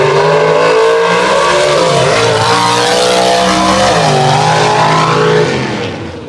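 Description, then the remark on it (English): Loud, roaring drag race car engines rev and launch together in a drag race run, pitch sweeping up and down as they accelerate hard, sustained before trailing off at the end. “This is going to be a big drag race going on.”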